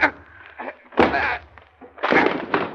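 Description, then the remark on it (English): A door is forced open with a series of heavy, irregular thuds and crashing blows, each loud impact followed by a brief rattle, with no voices. “Oh, break down the door.”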